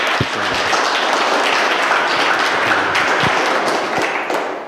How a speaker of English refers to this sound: Ladies, thank you. Round of applause, would you?